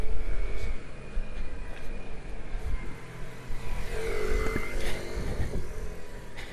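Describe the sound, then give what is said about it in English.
A motorcycle engine rises and falls in pitch as it passes along a street, loudest around the middle, with steady traffic rumble underneath and no talking. “Motorcycle.”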